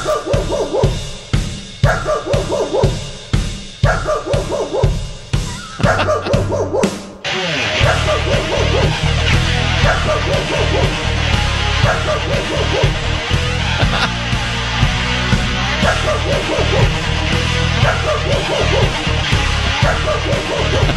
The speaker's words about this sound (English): What are you going to do in the 21st century? Well, of course, you're going to do a remix of the dog barking and blast it at your neighbors through your patio speakers at maximum volume.